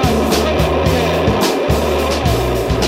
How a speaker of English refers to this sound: Liftoff. Okay, MA-6, launch. Vehicle screams high into the sky with all five engines blowing out.